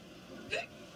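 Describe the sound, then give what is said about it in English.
A single quick hiccup from the character Villanelle in a TV show trailer pops out in the middle, short and sharp against a quiet background, with no talking around it. “And the only other time we know of a hiccup in a trailer is when she is in the garden with that other woman, which appears to be this upcoming episode.”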